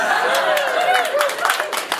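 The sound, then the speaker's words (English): An audience applauds steadily for about two seconds, dense clapping mixed with some cheering and crowd voices. “You all applaud that or something.”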